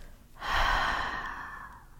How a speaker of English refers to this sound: I want you to take a couple of cleansing breaths with me. Draw in a full breath, extending your belly, and release all of your worries and stress through the mouth.